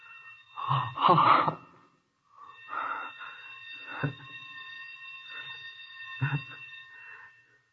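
A sprinkler alarm bell in a basement rings at 6 o'clock in a steady, sustained metallic tone for several seconds, preceded and punctuated by short breathy gasps and rustling bursts.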